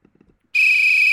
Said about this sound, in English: There's the whistle and kickoff.